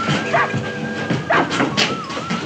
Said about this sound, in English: And I don't know if you noticed, but there's like dogs barking in the background. And for some reason, watching it this time, it made me feel like it was like a dog pound.